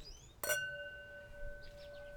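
A single bright clink of two glasses touching in a toast, followed by a clear, sustained ringing tone that slowly fades.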